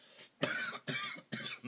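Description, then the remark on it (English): Three harsh, breathy coughs in quick succession after taking a hit of cannabis, each one starting abruptly, with brief pauses between them and no talking. “And if you're asking why I coughed, it's not because of the corona.”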